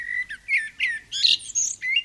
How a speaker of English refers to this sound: One can hear the great crested flycatcher in almost any neighborhood right now, and see this bird, too, with not too much effort. But it really makes its presence known